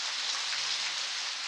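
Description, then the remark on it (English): Steady rain from a California rainstorm on a midwinter night falls in a dense, even hiss, with fine drops pattering continuously on a surface. No voices, just the constant wash of the downpour. “We leave you this week in a midwinter night's rain.”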